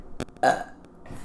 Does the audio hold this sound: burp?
yes